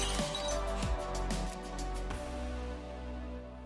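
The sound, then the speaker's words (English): Glass shatters in a series of bright, sharp crashes followed by scattered tinkling shards, heard over a steady humming tonal background that lingers after the last break. “Yeah, it is part of it, and I don't know, maybe one day we'll get rid of it, but for now, we'll break a glass every single time we have a podcast.”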